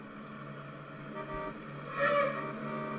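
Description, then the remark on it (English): A car engine drones steadily, then tires let out a loud, shrill squeal near the end as the car screeches to a halt in the final Edith Keeler scene. No one speaks. “He stops her as the car screeches to a halt.”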